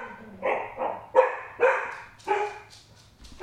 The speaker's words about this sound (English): Oh, wow, we have a dog.